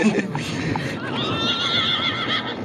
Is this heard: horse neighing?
yes